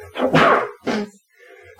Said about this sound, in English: Bless you. I was trying to mute my microphone so that it couldn't hear me sneezing.